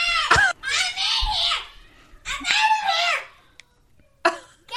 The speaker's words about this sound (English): And my kids are screaming outside of my bedroom again. But not bad screaming.